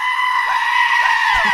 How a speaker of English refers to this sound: Imagine, if you will, in fact, don't imagine, listen to it right now, the sound of not one, but a swarm of goats all screaming at once. And it sounds a little something like this.